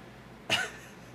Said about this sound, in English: I just know I'm gonna cough. Hold on.